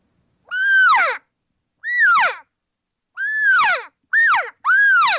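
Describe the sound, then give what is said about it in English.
A cow elk chatters a regathering call with five loud, nasal mewing calls, each rising then sliding down in pitch, spaced by short pauses, the last two coming quickly back to back. “here's the sound you're going to hear from a cow, and even a bull can do it.”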